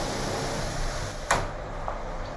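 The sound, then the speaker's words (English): A door shuts with one sharp knock partway through, followed by a fainter click, all over a steady whooshing hum like an air conditioner. No one speaks. “Do you mind closing that door?”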